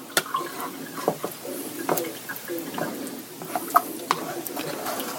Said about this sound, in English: So let's reach over here, give that a stir. There we go.